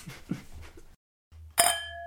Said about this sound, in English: So now, without further ado, here's the clink.